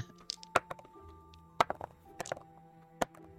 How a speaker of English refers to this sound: I heard four dice.